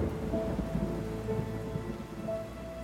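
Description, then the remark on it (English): Steady rain pours without a break, a dense hissing wash with a low, rolling rumble of thunder underneath throughout. No voices, just the continuous storm at an even, moderate loudness. “Inside her, the rain fell and would not stop.”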